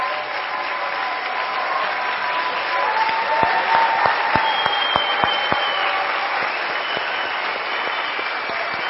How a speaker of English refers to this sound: I would like to ask all those that have served in the military or are currently serving to stand up, and let's give them a round of applause for their service at this time.